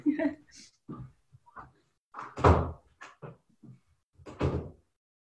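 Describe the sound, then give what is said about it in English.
An office door is pushed shut with a solid thunk, followed by rattling and clicking handling sounds as it is locked, then another firm knock of the door settling, amid brief pauses. “Sometimes your office door does not lock all the way.”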